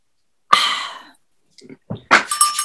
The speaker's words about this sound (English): Is that the Boris bell? Oh my God, it's still going.